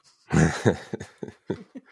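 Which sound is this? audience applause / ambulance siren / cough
cough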